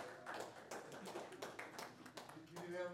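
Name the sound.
hand clapping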